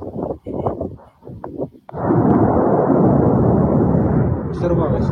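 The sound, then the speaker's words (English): Brief voices talk, then a missile explosion cuts in abruptly, a loud blast that rolls into a heavy, sustained roaring rumble lasting over three seconds. “I think that was the missile.”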